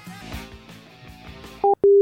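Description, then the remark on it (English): Quiet muffled music gives way to a phone line's busy tone after the called party hangs up: two loud, steady electronic beeps, one short and one longer, separated by a brief gap, cutting off abruptly. “What, they just hung up?”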